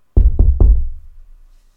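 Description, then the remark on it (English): Three firm knocks on a wooden door, evenly spaced about a fifth of a second apart, loud with a low, hollow thud that rings out briefly afterward. “Listen, I am standing at the door, knocking.”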